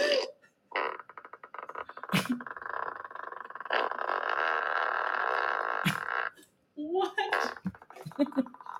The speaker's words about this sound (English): So now the farting sound effect.